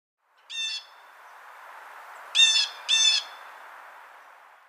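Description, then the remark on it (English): Three harsh, piercing territorial shrieks of a blue jay ring out over a soft hiss of background noise: one call, a pause, then two quick calls close together, loud. “Some strong territorial evidence can be traced to the blue jay and its piercing shrieks.”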